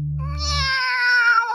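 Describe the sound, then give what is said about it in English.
A single long, drawn-out cat meow, loud, rising then wavering as it fades, with a brief low rumble underneath at the start and no talking; the meow comes from inside a bin. “Meow. It's in the bin. Definitely in the bin.”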